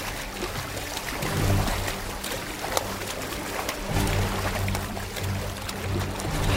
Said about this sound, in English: There! The splashing's coming from over there now!